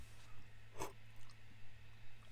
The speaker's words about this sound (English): I swallowed the ice cube. When the ice cube melts in my whiskey mug, it gets in through my sippy lips sometimes, and then it gets in my mouth and it's too cold.